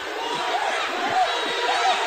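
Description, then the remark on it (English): A crowd at a wrestling match roars after a wrestler takes Torres down for a quick two count, a dense, steady wash of cheering and shouting, with a few faint whistles rising above the din for about two seconds. “He got the crowd fired up on that one.”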